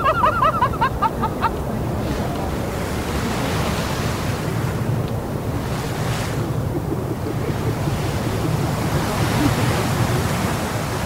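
A geyser in Yellowstone National Park erupts on a sunny summer day, a loud, steady rush of water shooting 4 or 5 feet out of a hole in the ground, surging and pulsing up and down throughout, after a few brief high chirps at the very start.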